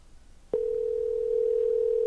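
A phone's ringback tone on an outgoing call to a friend in the D.C. area starts after a brief quiet moment: a steady, fairly loud electronic hum that holds unbroken to the end, with no one speaking.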